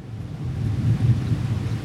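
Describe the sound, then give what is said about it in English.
A low, continuous rumble of thunder during a thunderstorm rolls through, swelling slightly in the middle before easing off, deep and muffled, with no voices present. “What an appropriate time for us to have a thunderstorm when we're talking about God's power.”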